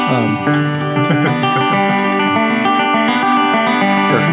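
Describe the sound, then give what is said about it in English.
A banjo drenched in heavy reverb, its plucked notes smearing into a dense, ringing wash that sustains loudly and steadily throughout, with no voices. “I mean, that's a ton of reverb.”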